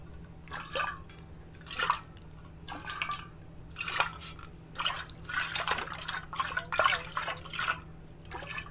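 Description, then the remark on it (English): Water sloshes back and forth inside a metal water bottle being shaken back and forth, in repeated rhythmic splashes, fairly loud, with a faint hollow, echoey ring and a low steady hum underneath. “But, like, I just sat there for, like, 20 minutes and, like, shook my water bottle back and forth.”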